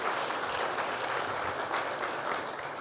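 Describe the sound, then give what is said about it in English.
An audience applauds steadily throughout, a dense, even wash of many hands clapping at a constant level with no voices over it, celebrating the opening of the Village of Hope orphanage in Haiti, named the Crossroads Home for Girls. “Can we have a round of applause for that?”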